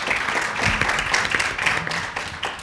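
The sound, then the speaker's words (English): An audience applauds steadily for a few seconds, a dense patter of many hands clapping at once, moderately loud and sustained without a break, as a round of applause for the panelists at an event about a Washington, D.C.-based immigration policy think tank. “So quick round of applause for our panelists.”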